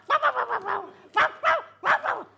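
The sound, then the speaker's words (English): A dog barks: a quick burst of five sharp, yappy barks, a brief pause, then four more spaced out. No voices. “What a naughty dog.”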